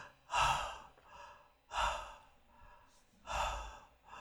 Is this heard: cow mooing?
no